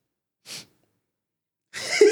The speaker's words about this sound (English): Okay. That was my smug sniff. Smuggy smugness.